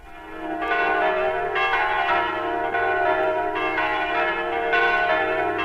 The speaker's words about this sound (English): Those are the bells of the Church of the Holy Sepulchre in Jerusalem.